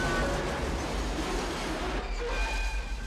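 A train rumbles steadily along railroad tracks, a continuous low roar with faint high metallic whines on top, loud throughout.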